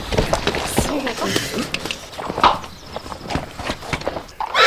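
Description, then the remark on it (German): Horses shuffle and clop their hooves in a busy, restless burst as they are tied together with ropes in groups of four or five to be led away, with a brief whinny-like cry rising midway and voices murmuring underneath. “Wir müssen so schnell wie möglich mit den Pferden verschwinden.”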